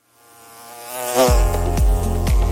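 Bees buzzing loud, a droning hum that swells from faint to full within the first second, then holds steady with a few low, throbbing pulses. No one speaks.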